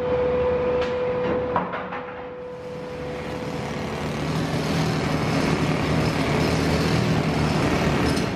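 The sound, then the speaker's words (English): A loud industrial din at a steel plant in Saukville, Wisconsin: a steady mechanical hum and a few sharp metallic clanks early on, swelling into a dense, continuous roar of metal crashing and grinding as magnetic cranes dump scrap metal, such as shredded automobiles and railroad wheels, into massive hoppers. “At the Charter Steel Plant in Saukville, Wisconsin, just outside of Milwaukee, magnetic cranes scoop up giant fistfuls of scrap metal and dump them into massive hoppers.”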